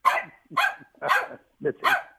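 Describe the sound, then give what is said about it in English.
A pet dog, a female pup who has just had a haircut, barks sharply about five times in quick succession, loud, with short gaps between the barks. “Your dog and my dog talking to each other.”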